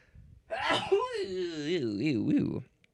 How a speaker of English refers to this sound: Maybe after I sneeze. Let's see.